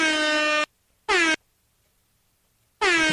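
Three loud blasts of an air horn sound effect with a gap between each: a long first honk, a short second, and a third cut off at the end, with silence between and no talking.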